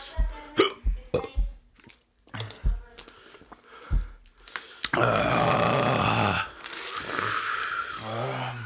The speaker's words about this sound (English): You got the hiccups?